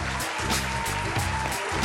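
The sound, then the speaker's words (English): A steady burst of applause, dense and fairly loud, with many hands clapping together in a continuous wash of sound and no voices over it. “I'm going to give myself a big round of applause.”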